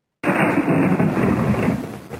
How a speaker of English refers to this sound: with some added pixels to represent rain and flashes for lightning and thunder, and then the same terrible lightning sound effect. And I'll try and find it here so we can play it for you.